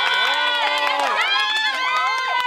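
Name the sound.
audience applause and cheering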